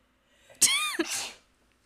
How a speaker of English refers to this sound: Bless you.